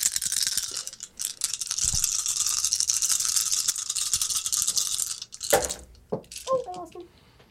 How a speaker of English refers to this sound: Can just be dice rolling sounds. It's like a bunch of them. It's like rolling a whole set.